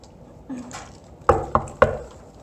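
Three sharp knocks rap on a wooden door in quick, slightly uneven succession, fairly loud against a quiet background.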